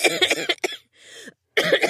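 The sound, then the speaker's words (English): A fairly loud fit of harsh, rapid coughs, then a brief raspy inhale after a short pause, followed by another burst of coughing. “Don't cough too hard; something might come out of there.”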